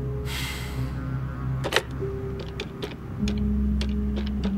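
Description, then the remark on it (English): A phone number being dialed: a string of about eight sharp button clicks at an uneven pace over a low steady hum, with a brief soft hiss at the start. “After Victoria's line disconnected, I picked up the bit of paper Mikhail had so reluctantly given me, sighed, then dialed.”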